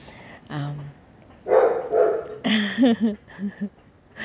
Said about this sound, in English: So funny. Nobody's walking, but I don't know why he's barking. I think so he just want to vent too.